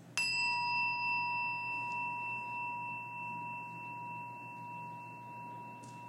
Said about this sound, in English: Each week, we ring this bell in solidarity with people around the world, and today especially holding in our hearts the dreamers. As we listen to the chime, let us remember our connection to each other and the world around us.